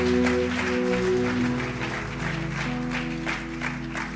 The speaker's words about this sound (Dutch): Maar laten we God en deze mensen een applaus geven. Let's give God and these people a hand.